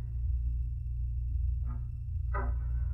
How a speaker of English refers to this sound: Oh, it would be a squeaky door.